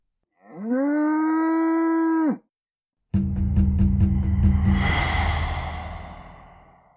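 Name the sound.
cow mooing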